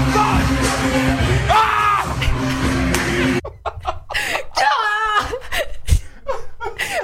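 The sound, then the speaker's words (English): A voice lets out loud, strained screams in a roaring, monster-like growl imitating the Hulk, then breaks into choppy bursts of shouting mixed with laughter, all forceful. “Why don't you go back to you like screaming your head off? Ah! Like you're the Hulk.”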